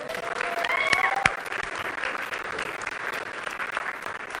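A crowd applauds steadily, a dense wash of clapping with a brief whistle and cheer near the start, holding at an even moderate level throughout.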